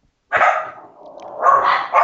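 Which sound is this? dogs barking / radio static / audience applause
dogs barking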